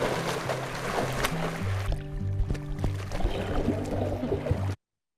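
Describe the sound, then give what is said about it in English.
Water splashing and sloshing continuously for several seconds, steady, as a tiger goes into it and moves through it, with a low hum underneath; no one speaks. “Splashing.”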